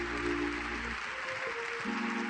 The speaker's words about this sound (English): Clap your hand to the Lord, everybody. Give God the praise.